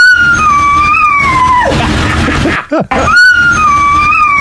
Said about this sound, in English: One is just the dog solo, and then one is the dog remixed in with ….